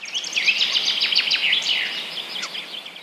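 Busy songbird calls fill the air, a steady overlapping stream of high chirps, trills and quick whistles, moderately loud and continuous throughout, with no one speaking.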